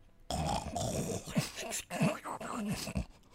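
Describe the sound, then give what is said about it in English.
A person imitates snoring and snuffling using only the soft palate: a loud, raspy snore rattling steadily for about three seconds, broken by a few wobbling snorts before it stops abruptly. “Was just snoring Beautiful.”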